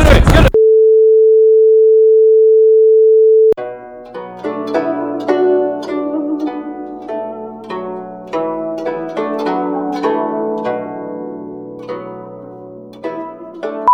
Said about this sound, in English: Stop fucking ringing me.